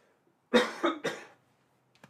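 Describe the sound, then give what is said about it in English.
A quick run of three loud coughs in succession, followed after a pause by a faint small sound near the end. No talking. “I need to cough again.”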